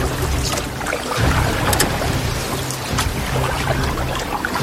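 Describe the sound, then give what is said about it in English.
Water sloshing steadily around a small boat as it is paddled quickly toward the shore, with brief splashes recurring every second or so as paddles dip in, fairly loud, with a low rumble underneath and no voices. “Quick, paddle to the shore, fast!”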